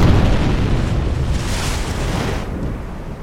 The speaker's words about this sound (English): He survived a plane crash, he's the only expert on plane crashes on the island, and then he's the only one who's killed when a second plane crashes onto the island. Well, there goes our only way home.